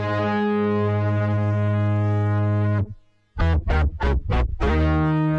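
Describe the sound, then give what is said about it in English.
A Moog Voyager synthesizer plays alone next door: a loud, buzzy, harmonically rich low note sustained for several seconds, a short break, then a quick run of pulsing repeated notes before the tone holds again. “Actually, that was the Voyager next door.”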